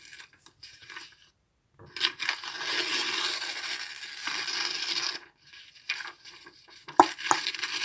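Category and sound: household object, paper being ripped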